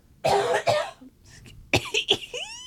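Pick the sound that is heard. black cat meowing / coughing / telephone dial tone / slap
coughing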